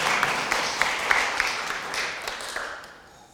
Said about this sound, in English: We should give Cindy a round of applause, right, for getting through that Bible reading.